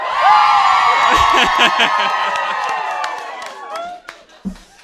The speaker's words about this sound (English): But also, for the Port Salut crew that are listening overseas, far and wide, make lots of noise. Yeah. Cheer. So for Port Salut crew who can't be here, let's hear it.